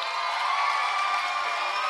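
A large audience claps and cheers loudly and steadily, a dense wash of applause and shouts that fills the whole two seconds without letting up, welcoming a violinist onto the stage.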